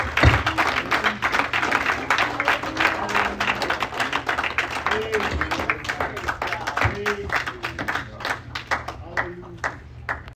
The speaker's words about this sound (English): Let's give an applause, a worship, and a praise to the Lord as pastor comes up.